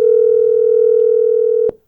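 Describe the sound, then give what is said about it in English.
A steady, loud telephone dial tone of an outgoing call hums continuously for nearly two seconds, then cuts off abruptly with a small click. No voices are heard. “So we had to call her on the phone this morning.”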